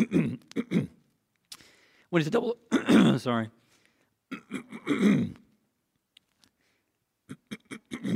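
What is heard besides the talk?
coughing and throat clearing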